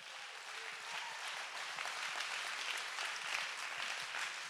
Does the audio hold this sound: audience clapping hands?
yes